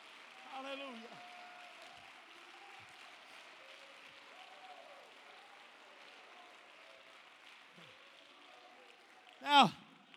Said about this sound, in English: Clap your hands to him one more time.